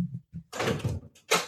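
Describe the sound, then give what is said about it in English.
A door is handled and swung open to let out a cat that got locked in: a couple of soft low knocks, then a broad scraping rush and a final sharp sweep as it moves. “And I got the cat got somehow locked in my door. Hold on. Give me 1 second.”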